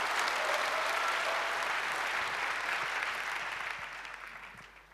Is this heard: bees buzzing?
no